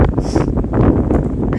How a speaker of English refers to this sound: That's the windy bit here.